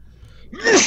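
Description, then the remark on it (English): A single loud sneeze: a faint breathy intake, then a sudden sharp burst of hissing noise that cuts off almost at once. No one is speaking. “Bless you.”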